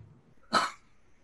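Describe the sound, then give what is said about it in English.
One short, sharp cough bursts out, lasting about a quarter second, with quiet background before and after and no talking. “I'm sorry, brother. I mean, cough you off.”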